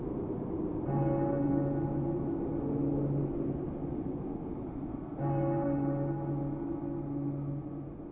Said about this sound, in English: And speaking of bells, wait until the tolling of the three, and know that it tolls for thee.